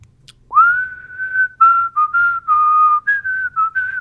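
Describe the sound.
A man whistles a short, wandering tune, clear pure notes gliding and stepping between pitches for about four seconds, with faint background hum beneath.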